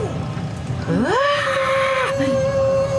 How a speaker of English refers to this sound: I scream out in rage, hoping that maybe they can hear. Just at the top of my lungs, I just scream.